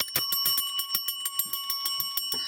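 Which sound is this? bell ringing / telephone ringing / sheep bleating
bell ringing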